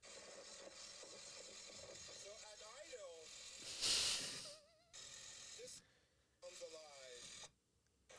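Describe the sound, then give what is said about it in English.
A car exhaust revs up and down in rising, falling sweeps, with a sharp loud hissing burst midway, heard through a slightly muffled, video-quality recording with brief gaps of near silence. “Sounds like a stock. That guy makes terrible exhaust.”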